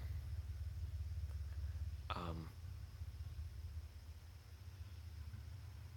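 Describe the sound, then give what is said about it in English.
A neighbor's motorcycle leaving, its low, steady engine rumble running throughout, broken by one brief, sharper rasp partway through, before the rumble eases slightly as it carries on, fairly quiet. “My neighbor's leaving on their motorcycle.”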